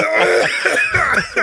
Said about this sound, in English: Jesus Christ. You got that weak cough. Jesus Christ, man, I'm sick.